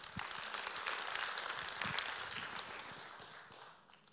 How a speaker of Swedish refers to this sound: Välkommen fram. Ge en applåd också.